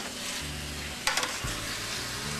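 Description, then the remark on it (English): Chicken breasts sizzle steadily in a hot pan with a constant crackling hiss, broken midway by a quick burst of clinking and scraping as they are stirred so they separate. “Give them a little stir so they'll separate.”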